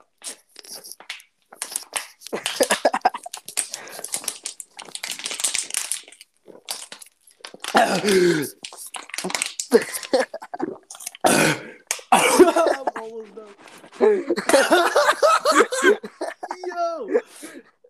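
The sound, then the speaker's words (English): Someone chugs a plastic bottle of water fast, the bottle crinkling and crackling in loud bursts, broken by gasps, coughing and a burp, with voices and laughter around it. “Dude, I'm gonna chug this bottle of water so fast.”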